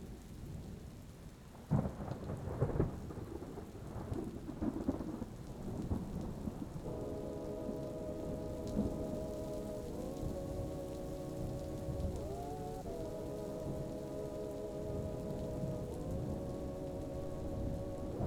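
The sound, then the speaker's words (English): Steady rain pours down while deep thunder rumbles and rolls, with a few sharper cracks early on; a sustained tonal drone joins midway and continues beneath the downpour. “I rush out into the madness, that soul-stirring sadness we call the world today, and I found it raining.”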